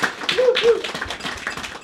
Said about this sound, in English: So round of applause for both of those two esteemed academics.